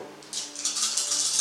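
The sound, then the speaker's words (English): A handful of seven six-sided dice (7d6) rattles and clatters for a damage roll, a quick run of sharp, bright clicks that starts after a brief pause and keeps tumbling to the end, with no one talking. “Sorry, I'm going to borrow all of your dice for this.”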